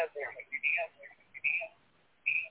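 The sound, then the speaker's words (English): Muffled, telephone-quality voice sounds come through a live call line, with a garbled, repeating quality like the speaker's own words echoing back in short bursts. “I hear echo.”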